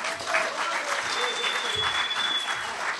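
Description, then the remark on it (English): Sustained church audience applause for a band, a dense steady patter of many hands clapping at an even loudness for a few seconds, with faint crowd voices and a thin high tone mixed in. “So a round of applause for ….”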